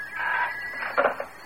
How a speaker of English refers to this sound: Oh, no. It's only the phone. I'll get it. No, no. Don't. I'm afraid. Why? I cannot let it ring.